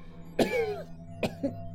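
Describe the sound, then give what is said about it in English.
A person coughs: one harsh cough trailing into a raspy, voiced tail, then a pause and two quicker, lighter coughs over a low steady hum. “Did you pick up my... cough syrup?”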